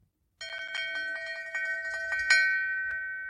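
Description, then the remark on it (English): A swinging bell in a house rings loudly and steadily, its bright metallic tones struck repeatedly in quick succession and sustaining with a long shimmering ring, with no voices present. “It was with great astonishment and with a strange, inexplicable dread that he, as he looked, he saw this bell begin to swing. It swung so softly in the outset that it scarcely made a sound, but soon it rang out loudly.”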